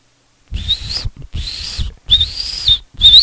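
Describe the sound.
A person whistles a bird call, four bright sustained whistled phrases with rising and falling pitch, fairly loud, separated by brief pauses with faint breathy noise underneath.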